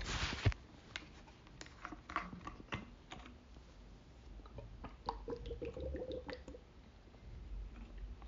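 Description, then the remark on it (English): Someone drinks water, with wet sips, squishy mouth sounds and a few soft gulps spread over several seconds, no talking. “All right, I'm gonna take a quick water break, and then we're gonna break down the Super Bowl, tell you everything you need to know.”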